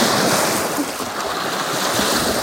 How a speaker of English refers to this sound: And this, as I sit here, or stand here, watching the waves come in, the idea or the question came to me.